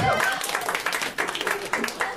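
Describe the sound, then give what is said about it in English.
A comedy show audience applauds steadily in a dense, crackling wash of clapping that fills the short stretch, with a voice audible over it at the start. “Round of applause for condoms?”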